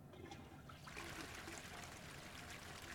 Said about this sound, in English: I've flushed, but now I'm standing here, well, sitting here still, while the toilet flushes